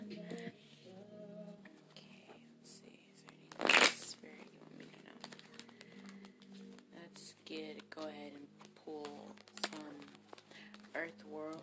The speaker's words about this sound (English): Oracle cards. Right ahead, went ahead and pre-shuffled, but I'm going to go ahead and do it again. Let's see, give me 1 second, guys. Let me. Okay. One more time.